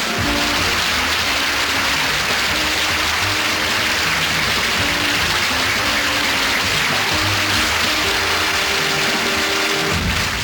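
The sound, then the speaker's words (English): A crowd cheers and applauds loudly and continuously, a dense, steady wash of clapping with shouts and whoops mixed in, lasting about ten seconds before fading out at the end. “Hey, you're a wild crowd tonight.”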